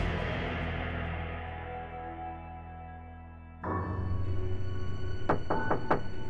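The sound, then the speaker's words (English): A sustained piano chord, played by a woman at home in Wichita, Kansas, rings and fades. Then, after a shift in the background, a sudden quick cluster of about five sharp knocks on the front door sounds near the end. “Vicki Wegerle was playing the piano when she was interrupted by a sudden knock at the door.”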